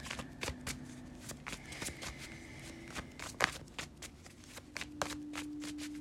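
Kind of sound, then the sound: household object, shuffling tarot cards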